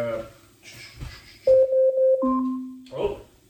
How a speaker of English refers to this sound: Oh. Your burrito timer is up. My burrito timer is up. Okay. Alexa, cancel.